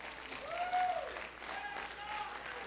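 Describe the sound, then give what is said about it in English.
An audience gives one more hand clap of praise before being seated, a dense, steady roll of applause that fills the room for a few seconds, with scattered voices calling out over it. “Oh, let's give him one more hand clap of praise before we're seated tonight.”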